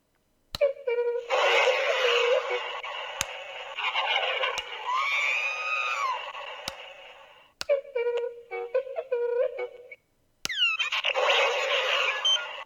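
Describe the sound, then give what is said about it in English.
Electronic toy rocket effects, rising and falling whooshing sweeps, play over the busy beeps and chirps of an R2-D2 droid toy held in the hand and activated by a Force Link band. It's loud, with bursts separated by a few brief pauses and no one talking. “In this case, it seems to be playing the rocket sounds over his beeps, which it wasn't doing in rehearsal, so sorry about that, everybody.”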